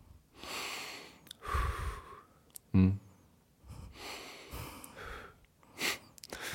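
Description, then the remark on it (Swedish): Several deep, airy breaths drawn in and let out, with a short voiced snort-like sound in the middle; no talking. “Nej, jag andas in.”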